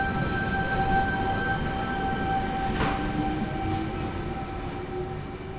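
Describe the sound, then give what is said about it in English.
A train at Katoomba station in the Blue Mountains rumbles steadily with a low, continuous drone and faint whining tones, broken by a short burst of hissing partway through; no one speaks. “And there was like maybe 16, 18 people getting off the train all up.”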